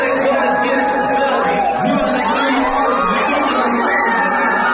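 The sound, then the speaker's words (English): Wedding guests at a hotel wedding in Philadelphia scream and cheer excitedly as Mike Scott walks in, loud and continuous throughout, with high-pitched shrieks and whoops layered over a dense wall of overlapping voices. “Everyone's freaking out.”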